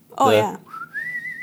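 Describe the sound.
A short vocal sound, then a single clear whistled note that slides upward and holds for about a second, fairly loud, imitating the whistling music of Sergio Leone's spaghetti westerns.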